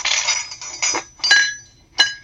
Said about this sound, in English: Sometimes that's easy because, you know, the sound is what it sounds like, you know, a clatter around a breakfast table.